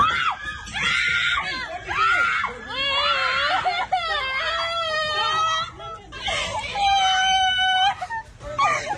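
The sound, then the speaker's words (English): A woman, a manager just hit in the head with a coffee pot during a squabble at a counter, screams and wails in loud, high-pitched distress, her cries rising and breaking over about nine seconds, with a jumble of other voices faintly underneath. “Is that why she was that the manager crying?”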